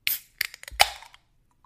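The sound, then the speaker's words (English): A can of Arrowhead Pilsner beer (5.2% alcohol) being cracked open: a few sharp metallic clicks, then a louder pop followed by a brief fizzing hiss that fades out. No one speaks. “May you enjoy your Arrowhead Pilsner. All right, I gotta give it a crack.”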